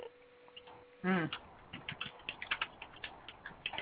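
A brief vocal sound gives way to a steady run of computer keyboard typing: crisp key clicks at an irregular, fairly quick pace, moderately quiet and continuing to the end.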